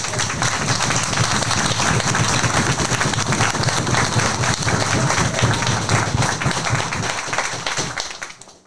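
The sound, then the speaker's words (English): A crowd applauds steadily, dense clapping filling the space at a constant loud level for several seconds before tapering off at the end, applauding a representative of the Lupus Foundation of America's Philadelphia Tri-State chapter at an event raising money for the foundation. “I also want to give a round of applause for representative of Lupus Foundation.”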